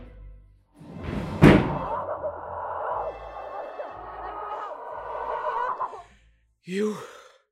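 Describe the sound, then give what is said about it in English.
A door slams shut with a single loud thud, followed by several seconds of steady grinding drone, then a brief breathy vocal sound near the end. “Close the door!”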